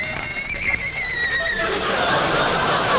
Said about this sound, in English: How do you like that? He even brought his horse.